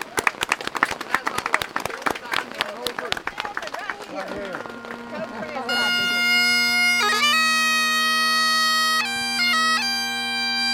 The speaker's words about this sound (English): 40 years ago today, we came here as an organized group. I think we ought to give the ladies that started this a hand of applause.